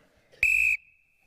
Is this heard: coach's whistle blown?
yes